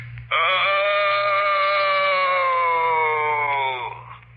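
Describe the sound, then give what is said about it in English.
A long, loud, wavering vocal groan, held for about three and a half seconds and sliding slowly lower in pitch before fading, with a faint low hum beneath. A voice imitating a ghostly moan. “Did you ever hear a more ghostly groan than that?”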